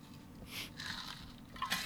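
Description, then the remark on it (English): A quiet sip from a drink: soft wet slurping bursts with a faint swallow and a small clink near the end, over low background hum and no talking. “Sorry, that was a poorly timed sip right there.”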